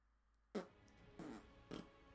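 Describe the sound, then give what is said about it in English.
Three short, wet mouth-made fart noises, or raspberries, blown with brief pauses between them, each a loud sputtering burst. “This is how you be a grown-up in a relationship, is you basically make fart noises at the other person until someone gives in.”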